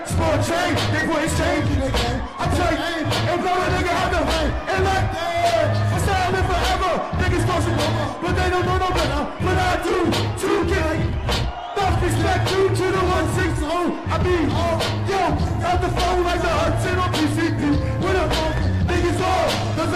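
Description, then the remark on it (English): A loud, dense roar of a festival crowd at Meredith Music Festival yelling and whooping over live music as the performer starts on stage, sustained with no break for the whole stretch. “And you can hear as soon as you start, everyone just lost it, and the whole crowd was just filled with joy.”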